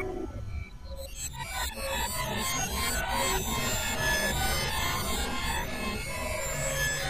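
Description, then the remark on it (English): Dense synthesizer keyboard playing with pitch bends at the end of a track, made by slamming hands all over the keyboard: clustered notes sliding up and down in gliding, wavering tones over a steady, full-bodied sustained wash, with no one talking. “There's that pitch bend.”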